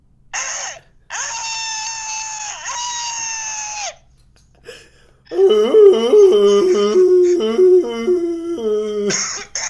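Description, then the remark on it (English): A person, just woken up, screams in panic: a long high shriek, then a brief gap and a louder, wavering, sobbing cry that rises and falls in pitch before cutting off. “It really just sounded like someone got murdered in my room.”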